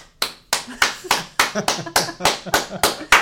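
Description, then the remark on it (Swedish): Hands clap in a quick, steady rhythm, about a dozen sharp, crisp claps evenly spaced like a brief round of applause, fairly loud and with no talking over them. “Det var inte jag som applåderade.”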